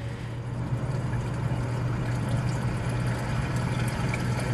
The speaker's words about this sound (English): Because this sound that you hear with the water trickling is flowing.